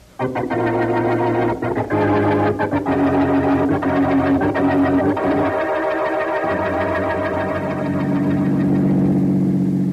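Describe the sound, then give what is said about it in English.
A car engine hums steadily while driving fast, a loud continuous drone whose pitch shifts slightly as it runs, with no voices over it. “Don't drive so fast”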